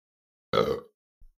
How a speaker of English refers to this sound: Good burp.